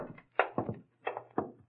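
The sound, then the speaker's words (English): A door being opened with a run of heavy wooden clunks and rattles, roughly four solid impacts in two pairs, over a faint low hum with no voices. “All right, Brody, open the door.”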